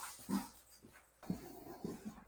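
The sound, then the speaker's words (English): A dog retches and heaves, about to throw up at someone's feet, making several throaty gulping bursts at roughly half-second intervals with breathy pants between them. The sounds are fairly quiet, with no talking. “my dog's right here. Looks like he's about to”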